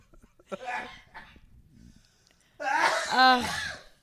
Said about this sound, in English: You two are both coughing, laughing.